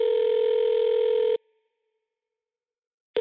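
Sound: telephone call ringing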